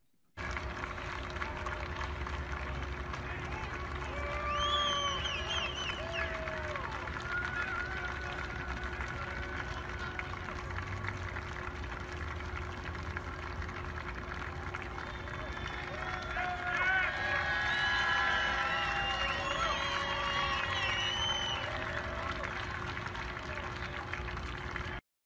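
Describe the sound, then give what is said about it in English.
A crowd of a couple thousand fans at Denver Broncos training camp cheers and shouts for Derek Wolfe continuously, a dense roar of many voices that swells twice, with high whoops or whistles rising above the noise during the louder bursts. “We're going to take a quick listen because you can hear the cheers for Derek Wolf.”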